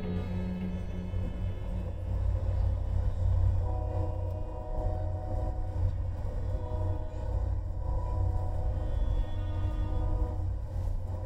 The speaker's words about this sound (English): It's May the 9th, evening, and I've just spent the last couple of days crossing the country on an Amtrak from New Orleans to Tucson. I didn't want to fly, it's just too quick.